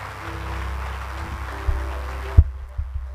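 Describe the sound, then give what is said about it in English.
A church audience claps together for Jesus during a service in a steady, dense wash of applause with a low hum beneath. The clapping stops abruptly, leaving a few soft thumps in near silence. “Please, if you can, clap your hands for Jesus.”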